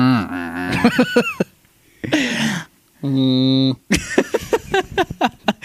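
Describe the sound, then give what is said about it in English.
A person imitates the low foghorn heard at the beginning of a film with a steady, droning hum of just under a second, set between bursts of talking and a brief breathy vocal sound. “Lots of fog horns in the beginning.”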